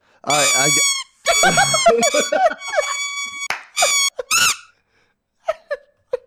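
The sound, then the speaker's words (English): A tiny trumpet blares a series of squeaky, nasal blasts with wobbling pitch, played loud, then trails off into a couple of faint, short toots. “That's my trumpet. I own a trumpet.”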